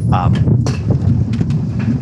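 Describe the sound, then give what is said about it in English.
A strong gust of Wisconsin fall wind roars steadily for about two seconds, a loud, deep rumble buffeting the microphone, with brief higher rustling flutters rising above it. “Wow, that's a strong gust of wind. That's a Wisconsin fall wind, folks.”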